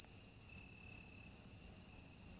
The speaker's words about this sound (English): For example, take a listen to this sample of Gryllus pennsylvanicus, or the fall field cricket.